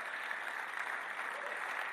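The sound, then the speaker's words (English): A crowd claps together in a steady, dense wash of applause that holds at a constant level for the full two seconds, with no voices standing out above it. “Your clap is in the house right now.”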